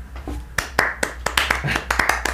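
human body sound, hand clapping

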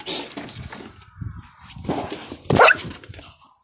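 animal, dog barking and yelping

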